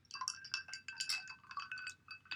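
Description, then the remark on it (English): Ice cubes in a drink clink and rattle against the sides of a glass in a quick, irregular flurry of bright taps, with no voices over them. “How are your ice cubes still intact?”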